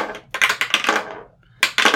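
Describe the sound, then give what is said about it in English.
Dice clatter across a hard tabletop in a quick burst of sharp rattling clicks, go quiet briefly, then tumble again in a second short roll, with no voices; the dice are being rolled during a game. “Shall we roll dice again? Yeah, we're having such fun with the dice.”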